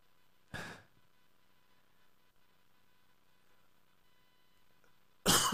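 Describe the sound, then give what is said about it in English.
Two short, harsh coughs, one near the start and another at the very end, fairly loud, separated by several seconds of quiet hum with no talking. “I'm not sure how you cough with these, I'm sorry.”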